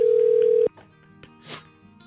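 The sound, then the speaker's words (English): A phone being called live during a radio show rings: one steady, loud electronic ring tone holds for under a second, then cuts off abruptly, leaving quiet line hiss and a brief soft rustle. “Let's all hear Dave's phone ringing.”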